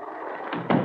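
A door at the end of a house hallway swings shut with a short, solid thump near the end, following a faint creak of movement over a steady hiss of background noise.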